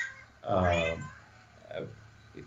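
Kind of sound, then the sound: animal, cat meowing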